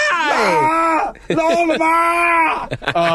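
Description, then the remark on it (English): A man's voice lets out drawn-out, wavering cries of agony, mimicking wrestler Terry Funk screaming in pain in the empty arena match against Jerry Lawler, with a brief break between two long anguished howls and a short final yelp. “But the screaming he does, there is not enough screaming in wrestling.”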